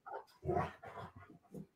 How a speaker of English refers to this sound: My dogs are losing their minds next to us, if you can hear them.